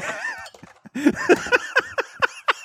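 Someone pounds on a table in a quick series of about seven loud, rhythmic thumps with a clattering edge, following and mixed with high, warbling squeal-like calls.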